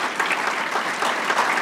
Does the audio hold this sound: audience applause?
yes